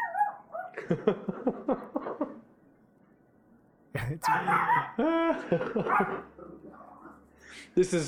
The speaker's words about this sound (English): Is that your dog again? Puppy. She's barking because there's a cat meowing.